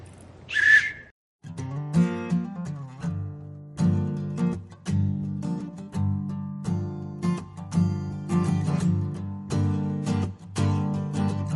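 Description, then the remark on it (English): A single short, shrill blast of a rape whistle sounds loudly at the start, then cuts off as a steady band of music with a strong low rhythm starts and continues to the end. “We're going to give you this. It's a rape whistle. You blow that if you're in any trouble, and someone with an actual gun will come and help you out.”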